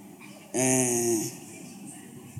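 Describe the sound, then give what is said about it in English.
A person imitates a snore with their voice: one short, loud, buzzing snort lasting under a second, followed by quiet room tone. “Snoring”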